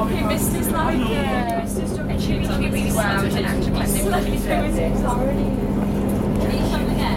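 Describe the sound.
Steady low rumble and drone of a moving passenger train heard from inside the carriage, with a constant hum and muffled voices talking throughout.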